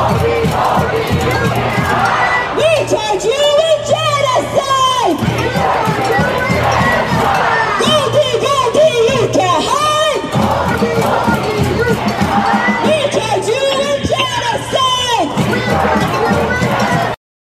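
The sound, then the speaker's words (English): A loud crowd of pro-Palestinian protesters chants in unison at chef Michael Solomonov's restaurant, voices rising and falling in a repeated rhythmic pattern with bursts of shouting and drumming-like thumps underneath, continuing steadily throughout. “And the people there vandalized the front door and the windows, and they were chanting this chant.”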